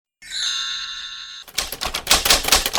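A typewriter's bell rings with a clear, sustained ding, then the keys clatter in a rapid burst of sharp metallic strikes. No voices are present.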